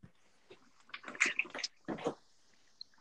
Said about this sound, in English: Yep, I've been hearing water too. Somebody gargling water.